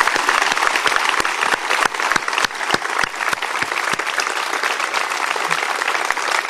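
An audience breaks into sustained applause for the players who performed a play the night before, a dense, steady wash of many hands clapping with sharper individual claps standing out, holding at an even, fairly loud level throughout without any talking.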